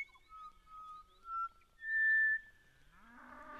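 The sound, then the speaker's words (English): Butcher bird song, from a black and white bird about the size of a jay: a few clear, fluty whistled notes, some held long and steady at different pitches, followed at the end by a lower, rougher rising tone. “That beautiful sound is the butcher bird, black and white bird about the size of a jay.”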